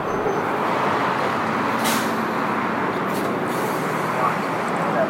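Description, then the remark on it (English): A city bus on route 94 idles with a loud, steady engine rumble, broken by two short, sharp hisses of air brakes releasing. “So I pass on driving another car, and instead hop on the 94 bus.”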